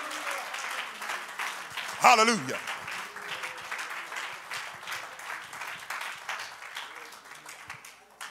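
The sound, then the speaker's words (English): A crowd claps hands unto the Lord steadily throughout, a dense, even patter of many hands at moderate volume, while a voice briefly calls out over it partway through. “Let's clap our hands unto the Lord and magnify him just for a moment.”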